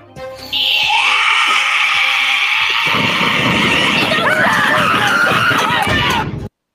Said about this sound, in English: Yeah, and then the finale, and it's a good few seconds here. She lets out this blood-curdling scream.